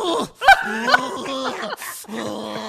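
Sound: voice imitating a growl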